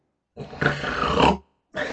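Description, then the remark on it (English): Loud, rasping snoring of a drunk man sleeping by the shore: one long guttural rattle lasting about a second, then a pause before the next harsh snore begins. No one speaks. “By the shore, an inebriated Rob snores loudly.”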